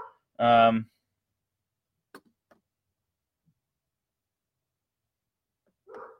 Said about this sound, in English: Yeah, my dog's freaking out. The trash truck is here.